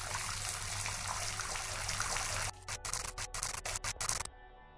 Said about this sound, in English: The water is still flowing from all 18 inlets, and will have completely filled this tank within the next 5 minutes.